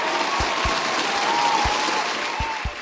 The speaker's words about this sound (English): I know there's no lightning round, but how do you feel about some thunderous applause?